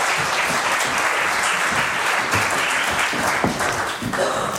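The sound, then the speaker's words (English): An audience applauds people for coming forward to the altar, steadily for several seconds, a dense, even wash of many hands clapping at once with no pauses, holding at a fairly loud level throughout. “Let's give them a round of applause for coming forward.”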